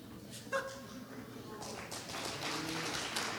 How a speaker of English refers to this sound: The applause is for you, not for me.